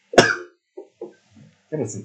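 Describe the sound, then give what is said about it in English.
A single sharp cough bursts out at the start, followed by a few short vocal sounds and then a murmured bit of speech near the end. “Oh, I got a cough again.”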